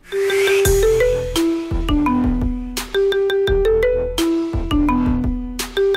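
A pop song melody plays as a tinny phone ringtone during a ringtone guessing game, with a bright synth tune over a pulsing beat, loud and continuous with no talking.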